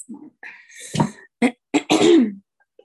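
A person clears their throat with a rough, gravelly rasp, then gives a few short, sharp coughs in quick succession, fairly loud with brief gaps between them and no talking.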